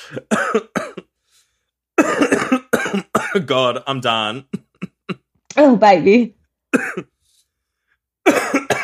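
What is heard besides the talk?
repeated coughing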